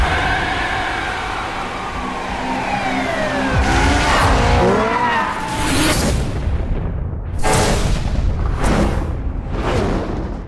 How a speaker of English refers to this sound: Isn't that just lame? Stupid car racing.